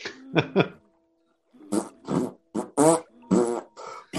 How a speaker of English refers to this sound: All those kids are farting. Look at all those bubbles.